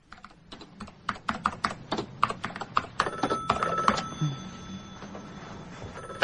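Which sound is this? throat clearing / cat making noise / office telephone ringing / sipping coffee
office telephone ringing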